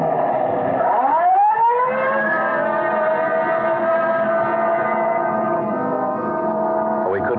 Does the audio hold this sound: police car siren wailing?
yes